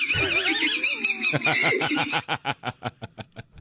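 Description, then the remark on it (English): In a hospital emergency room, a high, drawn-out squeal gives way to a fast, rhythmic train of squeaks from a squeaker toy a person has swallowed, each one pulsing with a burst of his laughter, steady and fairly loud. “And the more he laughs, the more it squeaks.”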